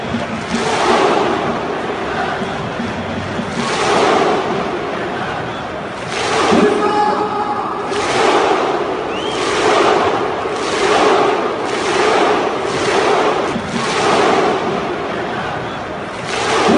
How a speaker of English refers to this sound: But one thing that will be missed from Iceland is their thunderclap. Now, this is after every game. The team goes in front of the spectators and they'll have this big clap. But it's quite something here.